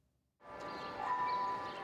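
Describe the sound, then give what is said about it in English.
Gentle music with sustained, bell-like tones enters after a brief moment of silence and holds at a steady, moderate level, played as hundreds of Falun Gong practitioners demonstrate their exercises in Union Square, New York. No voices are heard. “To the sound of gentle music, hundreds of Falun Gong practitioners demonstrated their exercises in Union Square.”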